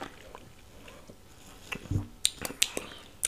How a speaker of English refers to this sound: We're going to go ahead and raise these glasses for a toast of a wonderful, great show. Cheers. And sip.